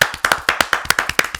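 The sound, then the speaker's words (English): A small group claps for those who collected 3 points this weekend, sharp slaps landing in a quick, slightly ragged rhythm. The applause is fairly loud and there is no talking over it. “As is tradition, if you collected 3 points this weekend, hold out the 3 point collectors. Give a clap.”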